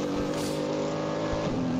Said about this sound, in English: So, trying to work out which car that was into the pits, but they had the door open the whole time. How thoughtless.